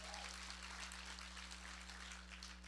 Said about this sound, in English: Come on, anybody excited tonight for the promise and the reality of everlasting life? Oh, come on, 6 p.m. We can clap louder than that.